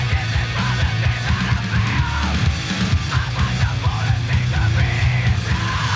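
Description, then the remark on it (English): A dense, loud heavy rock track with pounding low-end riffs and drums, topped by harsh screamed vocals that run continuously throughout. “Heavy as fuck. Yeah, it's heavy.”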